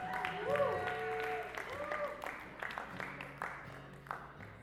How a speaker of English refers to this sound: You guys can add a round of applause for me.